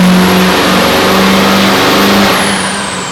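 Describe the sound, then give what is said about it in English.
A Duramax diesel truck engine roars at high revs during a pull on a dyno at a competition event, loud, with a steady droning pitch and a thin high whine above it, easing off slightly near the end. No talking. “Already our second Duramax of the day.”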